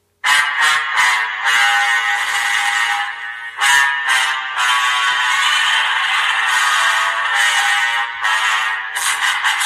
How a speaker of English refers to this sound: As far as the Godzilla roar, it's like, you think they're going to stick with the original one?